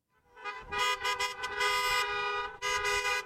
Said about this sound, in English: It was a rally tailor-made for the age of social distancing. A stream of cars flowed through Appliance Park, flashers on, constantly honking, and bearing signs asking GE Appliances and its parent company Hire to put their health over its wealth.